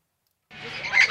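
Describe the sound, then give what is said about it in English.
Parrots squawk in a single harsh, raspy burst that starts abruptly after a moment of silence, swelling louder toward the end with a shrill, piercing edge. “Okay, they're loud and kind of obnoxious, but these parrots may actually help veterans deal with their deepest wounds.”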